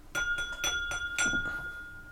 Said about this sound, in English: That really sounds like a bell. I'm kind of impressed.